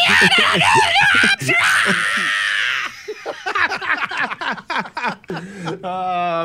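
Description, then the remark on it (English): A voice lets out a loud, strained scream-like yell, mimicking a 2004 Democratic presidential front-runner screaming state names, followed by quick excited talk and a final sustained high-pitched wail. “And he started screaming all the state names, and that was the end of his candidacy for president.”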